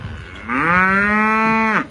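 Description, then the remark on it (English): A single long, loud cow moo, steady, lasting over a second before cutting off, with no talking. “Random cow.”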